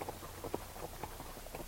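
A ridden horse's hooves clip-clop along a trail in a handful of soft, unevenly spaced thuds, fairly quiet, over a low steady background rumble with no one speaking, as a group rides out under a dull sky threatening rain.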